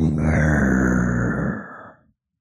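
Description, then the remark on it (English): Clint Eastwood gives one loud, rough growl imitating a tiger; the throaty snarl holds for about two seconds, then trails off into silence. “He can girl like a tiger.”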